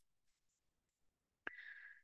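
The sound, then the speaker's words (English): A few faint papery rustles, then a sharp snap followed by a quick riffling whir as a deck of tarot cards is shuffled, lasting about half a second. No voices. “As I'm shuffling these cards, I also want to mention our upcoming lunation.”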